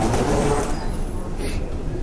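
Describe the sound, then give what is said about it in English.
Busy station concourse ambience at Grand Central Madison, by the Long Island Railroad entrance: a steady low rumble of trains and machinery fills the space, with indistinct crowd murmur and a brief faint hiss partway through. “Grand Central Madison. Enter for LIRR. That's Long Island Railroad.”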